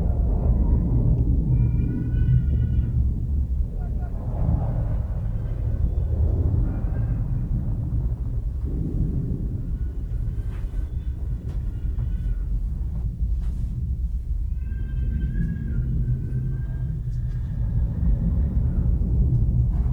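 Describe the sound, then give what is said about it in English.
A deep, continuous rumble of furnaces, from a scene in the film The Zone of Interest, roars steadily throughout, dense and unbroken, with faint higher tonal wails drifting in and out above it. “Her mother in bed, awakened by the light and the sound of the furnaces.”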